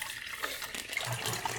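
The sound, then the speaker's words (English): Water stop for E6 film pours steadily out of a film developing tank into a sink, a continuous splashing gush that stays fairly quiet, with no voices over it. “So let's start getting ready to pour out. We've got 10 seconds left. Let's start pouring out.”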